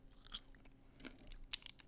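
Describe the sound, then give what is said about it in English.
Crisp crunching of a Werther's hard caramel candy being bitten and chewed, with several sharp cracking bursts in quick succession and no talking. “It's a Werther's because I'm a million years old. You're going to chomp it real quick. Yeah, just crunch it.”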